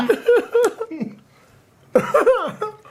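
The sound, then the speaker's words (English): Stifled coughing and sputtering of someone choking on a flaky wafer cookie while eating, in two strained, voiced bursts separated by a brief quiet gap. “I was trying not to cough so it spray everywhere.”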